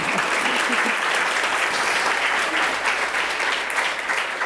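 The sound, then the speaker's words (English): An audience claps steadily, a dense wash of many hands applauding at an even, fairly loud level throughout, with no voices rising above it. “Well, it sounds like yes, you can applaud that.”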